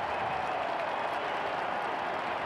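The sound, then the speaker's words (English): A large stadium crowd at a Texas–OU football game cheers during a timeout before a 49-yard field goal try, in a steady, dense roar that holds at the same loudness throughout, with no single voice or clap standing out from the wash. “Listen to the crowds.”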